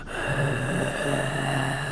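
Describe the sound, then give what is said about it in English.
A voice imitates heavy, raspy demonic breathing: one long, drawn-out, growling breath held steadily for a couple of seconds, fairly loud, with no talking. “You'll just hear the breathing in the background of every podcast.”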